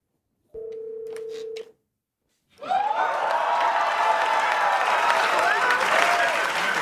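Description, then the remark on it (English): A short steady phone tone sounds, then after a brief pause the Saturday Night Live studio audience bursts into loud cheering and applause as Stormy Daniels appears, full and continuing to the end. “But listen to the cheers she gets from the crowd when she appears.”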